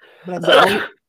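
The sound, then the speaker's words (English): A single loud sneeze, starting with a short voiced intake of breath before the sharp, breathy burst, then silence. “Bless you.”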